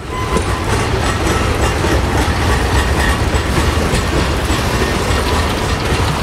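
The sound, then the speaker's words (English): A train in the film Wendy and Lucy rolls by loudly, its railroad cars producing a steady rumbling roar with a rhythmic clickety-clack of wheels over the track joints, continuous throughout with no voices. “There were several choirs of trains throughout the movie.”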